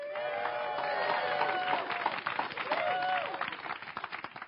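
A church audience screams and cheers loudly in appreciation, high-pitched yells and whoops layered over scattered clapping, sustained for several seconds before starting to thin out.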